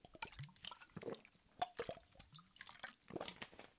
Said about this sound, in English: A moment of self-awareness comes over me as I take this next drink of water.